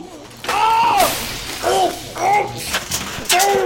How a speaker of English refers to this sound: Stop! You're breaking everything! You smashed the toaster! Oh no, the DVD player! Ruined! No! No! Not the coffee machine! No!